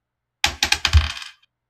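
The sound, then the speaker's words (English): Two percentile dice, one for the tens place and one for the ones place, are rolled as a D100 during a tabletop role-playing game and clatter onto a hard tabletop: a few sharp clicks in quick succession, then a short rattling tumble that settles within about a second. Fairly loud, with no voices. “roll me a D100”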